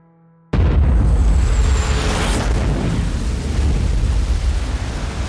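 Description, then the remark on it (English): A sudden, massive explosion over Lockerbie at 3 minutes past 7 in the evening bursts in after a moment of near silence, lighting the sky with an enormous fireball and registering 1.6 on the Richter scale, then rolls on as a deep, sustained roar and rumble that stays loud to the end. “The very earth beneath Lockerbie shakes. The blast hits 1.6 on the Richter scale.”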